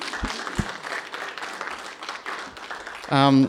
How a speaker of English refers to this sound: Just a little token of our thank you. But if everyone can put a warm applause together.